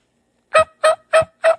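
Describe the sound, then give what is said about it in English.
Four short, raspy turkey-like yelps in a quick, even rhythm, loud, an imitated turkey tree yelp call with no talking around it. “hit your gobble. Hit your tree yelp.”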